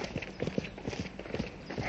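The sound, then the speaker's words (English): Hooves clip-clop in a steady, brisk trot as a horse-drawn dog cart comes along the road toward Charlington Hall at a fast pace, the hoofbeats clear over a faint rumble of wheels. “Look, there's something coming. Looks like a dog cart.”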